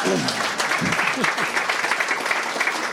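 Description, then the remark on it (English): An audience claps steadily for a few seconds, a dense crackling wash of many hands, with a few voices briefly audible near the start. “Now you should clap.”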